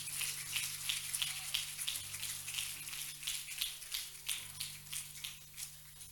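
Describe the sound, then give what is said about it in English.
An audience clapping their hands to the Lord in thanks for the cross, a dense crackling wash of many hands with a loose, steady rhythmic pulse running through it, moderately loud with a low hum underneath and no voices. “Clap your hands to the Lord and thank Him for the cross.”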